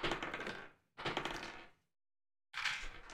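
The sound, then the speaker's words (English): Three bursts of bright, rattling clatter, like a d20 die tumbling across a hard table during an initiative roll, each lasting under a second with short silences between. Fairly loud, with no voices. “my first roll of this session is a nat one”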